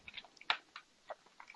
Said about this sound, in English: I can hear the keys rapidly typing, who is this man? That'd be our boss doing that, that's not me.